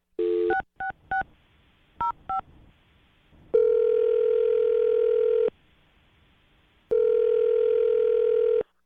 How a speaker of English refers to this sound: We're going to dial the number for you, and you take it from there. We'll jump in when we feel like you need some help.